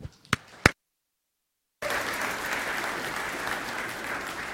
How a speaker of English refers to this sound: Thank you for the clap. It's so nice to go somewhere where they clap for you. It's awesome.